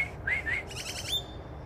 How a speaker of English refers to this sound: I don't like uppity people like these freaking birds that are landing here now. Hey, beat it.